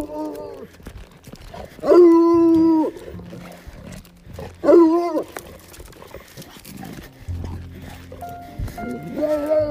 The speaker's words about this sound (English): So, this is what you call a hound who's excited.